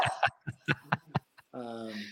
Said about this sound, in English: Got a little one barking.